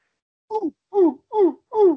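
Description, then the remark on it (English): A person's voice imitates a monkey with four short, hooting calls in quick succession, each sliding downward in pitch, fairly loud and with no other sound around them. “That's a monkey.”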